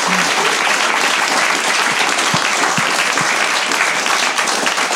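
A crowd claps steadily for several seconds, a dense, even wash of applause that stays loud throughout with no voices rising above it.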